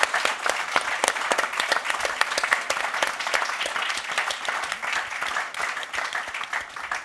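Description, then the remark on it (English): An audience applauds steadily for about seven seconds after a spoken-word performance, a dense wash of many hands clapping at once with sharp individual claps poking through, holding at an even level without voices on top. “Round of applause for everyone.”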